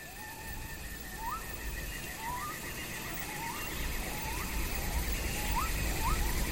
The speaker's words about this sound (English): Yeah, so here there's clearly a bit more going on. You can hear different animals, cicadas. Mm. There's even sort of a low rumble of thunder in there somewhere.